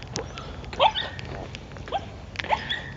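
A small dog sniffs and snorts, giving a few short, sharp nasal bursts with quick squeaky edges, spaced irregularly over a faint background hum.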